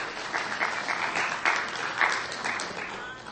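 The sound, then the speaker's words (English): Steady audience applause for support groups fills the whole stretch, a dense patter of many hands clapping at moderate loudness, with a few sharper claps standing out now and then. “Yes, let's applaud those support groups.”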